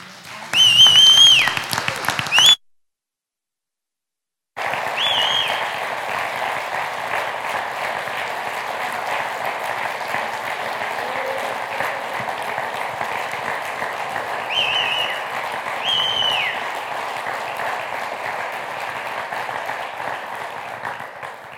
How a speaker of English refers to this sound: Thank you for clapping for me to come back up. I appreciate that.